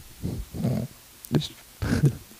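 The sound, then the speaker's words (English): A person imitates a pig with four rough, guttural snorts. The first two come close together, then a short sharp one, then a longer final grunt, all low-pitched and fairly loud, with no speech. “I want to sound like a pig in this moment.”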